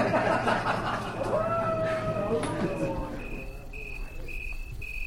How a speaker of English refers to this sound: But what makes this mouse interesting, to me at least, is its call. According to reports by biologists, it waits for the dark of night, gets up on its hind legs, throws its head back, and... howls like a wolf.